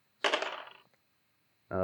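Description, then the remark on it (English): Three dice are rolled: a short clatter of small hard objects tumbling and rattling across a surface, settling within about half a second, before a voice starts talking. “So I'm looking to roll above my number, correct?”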